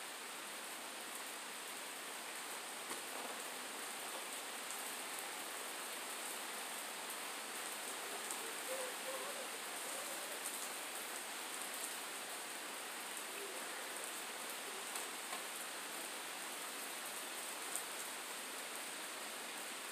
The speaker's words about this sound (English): Aye, aye, aye. It really started to pour, so I had to run inside and close my windows. Sorry about that, folks.